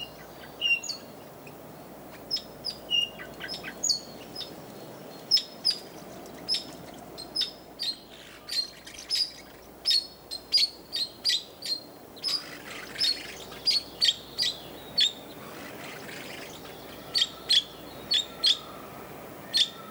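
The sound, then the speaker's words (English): Parakeet song, recorded for the compilation CD 50 Bird Songs from Around the World: a steady run of short, high chirps and whistled notes repeating every second or so over a soft background hiss, with no voices. “The parakeet's melodious tunes were recorded for the compilation CD, 50 Bird Songs from Around the World.”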